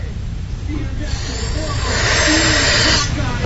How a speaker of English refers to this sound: Here's one of those examples. This is actually one of the YouTube videos. It's actually a cute girl, maybe about 16, 17, about to huff one of these spray cans.